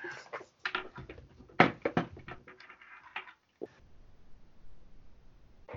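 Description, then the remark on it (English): A door opens with a cluster of rattling clicks, knocks and a sharp clunk to let dogs, including a Yorkshire Terrier named Belle, back inside from the cold after scratching at it, then settles into quiet with faint light pattering. No one speaks. “Speaking of dogs, my dogs are busy scratching at the door trying to come inside.”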